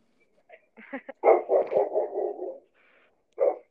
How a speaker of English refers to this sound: Oh, hold on. Why? Oh, yikes. Whose dog is that?